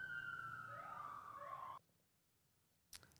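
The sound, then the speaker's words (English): A passing emergency vehicle siren wails for nearly two seconds, its sweeping tones clear, then cuts off abruptly, leaving near silence before a brief sharp noise at the end. “We'll let this little siren go by.”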